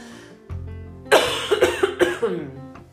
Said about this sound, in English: Excuse me while I cough.